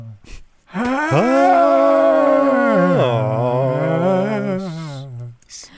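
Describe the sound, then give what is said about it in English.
A person imitates a dog howling with one long, loud vocal wail that wavers in pitch and sinks into a lower, groaning tone partway through before trailing off. “How'd you make a Ferrari manager go woof?”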